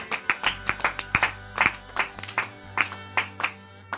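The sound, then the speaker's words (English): An audience claps together in a steady, rhythmic beat, about two or three sharp claps per second, over a low sustained hum. No one speaks. “Clap if you're clapping.”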